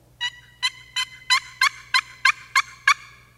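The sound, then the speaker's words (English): A turkey box call, used by hunters to attract tom turkeys, scratches out nine sharp, raspy yelps in a steady, even rhythm, each a short bright burst with a faint low hum underneath and no voices. “But here's the box call.”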